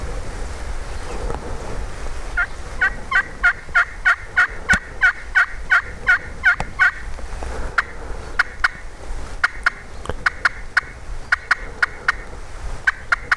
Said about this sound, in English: And they got in a huge hen fight, jumping up and down, swatting each other, fighting purr, and that gobbler lost it and started gobbling.